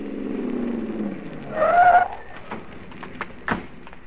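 A car engine rumbles, then tires let out a short, high squeal as the car brakes to a stop while pulling into a parking lot, followed by a few sharp clicks and thumps.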